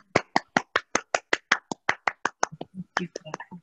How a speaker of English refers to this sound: If everyone could just show their rounds of applause in their screen, I would love it. I want to take a picture, so keep your applause going.